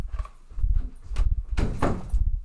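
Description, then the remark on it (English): A door is pulled shut, with a few hollow thumps and a brief rattling clatter amid low shuffling movement. No one speaks. “He can be in here, but the door has to be closed.”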